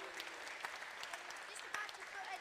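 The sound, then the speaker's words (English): An audience claps steadily throughout, a dense patter of many hands at an even level with no pause in the applause, applauding the builders of a not-yet-finished palace. “I think they get a round of applause.”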